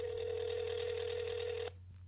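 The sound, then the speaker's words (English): A single ringback tone from a phone call, a steady buzzing hum that holds for under two seconds and then cuts off into a quiet pause, heard alone with no voices. “Is she going to pick up the phone?”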